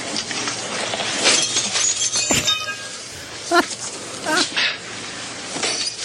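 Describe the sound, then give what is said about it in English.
Windows being smashed: a sharp crash of shattering glass rings out, followed by scattered tinkling and clinking fragments, while loud shouting voices break in over the noise. “He's breaking like all the windows.”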